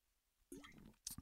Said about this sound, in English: Sorry, just taking a gulp of water.